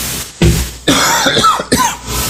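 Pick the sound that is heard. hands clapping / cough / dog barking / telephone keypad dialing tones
cough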